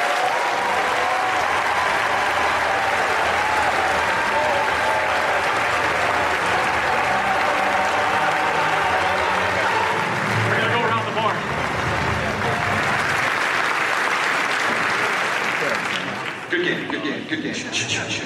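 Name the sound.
round of applause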